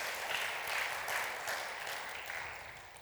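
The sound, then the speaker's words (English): A church audience applauds the Lord in a dense, steady wash of many hands clapping together, holding fairly even for about three seconds before easing off slightly at the end, with no voices heard. “Can you applaud the Lord our God for his goodness and this gospel and this mystery revealed to us?”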